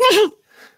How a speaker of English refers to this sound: Bless you.